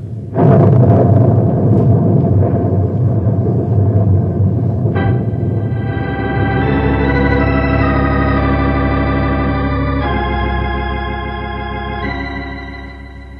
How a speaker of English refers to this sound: Yeah, but let's get inside the cave before we get soaked. Here comes that rain again.